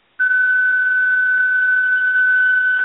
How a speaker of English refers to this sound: Wow. I thought, was that coming from you or from us? I came from the mobile command unit. Was that an alarm?